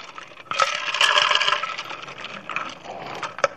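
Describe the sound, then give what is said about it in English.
Someone drinking water: soft sloshing and gulping noises over a few seconds, with light clicks and a sharper tap near the end. No talking. “As for people who are listening on podcasts, they know that I'm actually drinking water at that point.”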